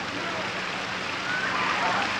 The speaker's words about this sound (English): Yes, it's raining.